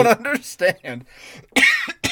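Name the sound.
coughing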